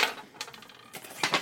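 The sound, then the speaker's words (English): A sheet of paper is shaken to fake thunder, giving a few crackly, rattling bursts that rise and fall over a second or so, with no talking. “I wish I had a paper for Foley to, like, thunder.”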